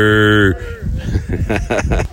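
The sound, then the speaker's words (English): A horned cow's low, droning moo sounds loud for half a second, then cuts off as people start talking outdoors at a green park run with lots of cows. “And this time it was green. Yeah, with lots of cows.”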